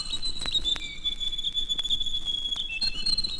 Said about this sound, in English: Found throughout New Zealand, this is the foster parent of the shining cuckoo. According to Maori legend, the Rirorido, or grey warbler, was a wise bird with knowledge of the changing seasons.